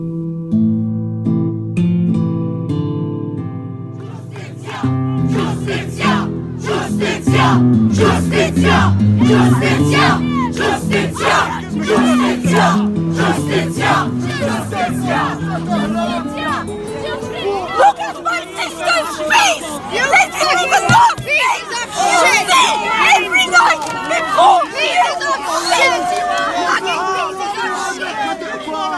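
A crowd of hundreds of protesters outside Parliament and the office of the Prime Minister shouts and chants in loud, rhythmic unison, then breaks into a dense, continuous roar of overlapping shouts and babble that carries on to the end.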